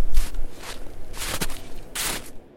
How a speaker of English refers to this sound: The crunch of boots in snow could be heard, and a moment later, the kindly, round face of a man appeared in the patch of sky cut out by the baby's swaddling.